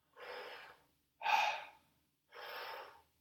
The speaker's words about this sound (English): And it's completely relaxing on the exhale, is not slowly breathing out, but it's just no tension for 2 seconds and then you breathe in again.